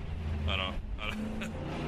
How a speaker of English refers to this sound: I don't. That always makes me wonder, like, where are you trying to go? Like, I think you just need your car to make that much noise. All I hear is gas prices.